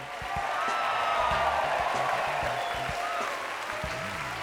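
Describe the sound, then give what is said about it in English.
A comedy show audience in LA applauds and cheers a comic coming on. The clapping is a dense, steady wash that stays loud and even for the whole four and a half seconds, with a few whoops rising above it. “Make some noise for your first comment”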